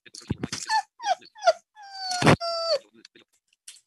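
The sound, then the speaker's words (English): A dog whines in a series of high, falling cries, starting with short whimpers and ending in one longer drawn-out whine, with a couple of brief rustling thumps. “I end up whining when I speak my mind. Life is woof, isn't it?”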